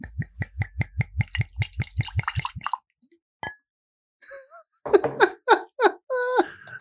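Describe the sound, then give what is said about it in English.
An 88-proof spirit glugs out of a bottle into highball glasses in quick, steady gurgles for a few seconds, followed by a pause and then some brief, higher-pitched squeaky sounds. “Okay, this is the only time that I love these microphones. Yes. All right. I have poured us.”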